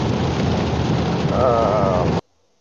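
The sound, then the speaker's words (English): Loud, steady roar of a car driving home in rain during flash flood and tornado warnings, a dense hiss of road and rain noise with a brief wavering whine partway through, cutting off abruptly into silence. “You got a lot of background noise, McColdy. Oh, yeah, I'm driving.”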